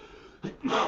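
A single sneeze: a sharp breathy intake followed by a louder, explosive burst of air, heard alone with no talking.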